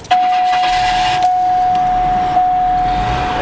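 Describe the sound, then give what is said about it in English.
An old car engine tries to start, giving a rough, noisy rumble with a few surges about a second apart and a steady high whine running throughout. No one speaks. “Let's see if your car starts.”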